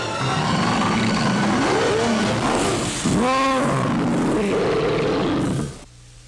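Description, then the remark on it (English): An 18-foot man-eating grizzly bear in the film Grizzly roars loudly over a dense, rumbling backdrop, its growl swelling into a sharp, rising bellow midway before the noise cuts off abruptly near the end. “The deadliest jaws on land belong to Grizzly.”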